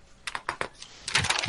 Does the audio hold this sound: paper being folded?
yes